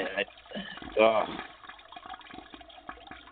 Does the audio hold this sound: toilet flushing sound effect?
yes